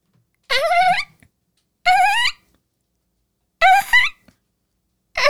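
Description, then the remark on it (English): A person imitates a dolphin with four loud, high-pitched squealing chirps, each a warbling, rising whistle-like squeak about half a second long, separated by short silences. “Your first cue is dolphin.”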